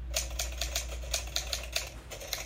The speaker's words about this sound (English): Oh, it's a sound effect of a typewriter I found. Look at this old sound effect of the typewriter. Whew. This one's from a long time ago. The first sound effect of a typewriter.